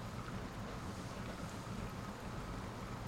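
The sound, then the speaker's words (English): The paddle wheel of the steamboat Marie Belle churns river water up and over its red boards in a steady, continuous, rhythmic wash with a low rumbling undertone, without any voices. “causing the water to run up and over the red boards in a mesmerizing motion. The rhythmic noise made by the moving water was pleasantly soothing.”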